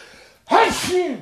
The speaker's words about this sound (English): Bless you. I sneeze.